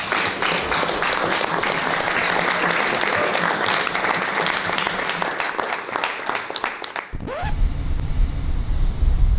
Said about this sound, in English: Okay, now, I mean, a big round of applause to you guys. Please.